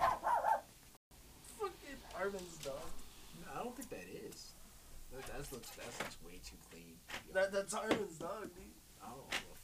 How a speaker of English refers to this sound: That's Harmon's dog, dude.